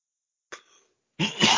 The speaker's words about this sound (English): Sorry for the coughing. Like I said, damn Buffalo weather.